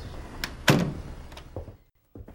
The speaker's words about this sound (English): I opened the door and went in.